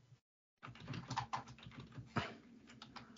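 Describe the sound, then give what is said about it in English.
Rapid keyboard typing while looking up the actor Mahershala Ali, a flurry of irregular clicks and taps after a brief silent gap, with a few sharper keystrokes standing out, no voices present. “This is the best podcast work ever. Just typing things.”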